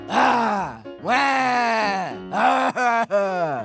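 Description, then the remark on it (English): A voice speaking as a sheep, Pet Lamb, imitates crying with a series of loud, drawn-out wailing sobs, about five bursts whose pitch swoops up and then slides down, separated by brief catches of breath. “So instead, I will approximate the sound of crying.”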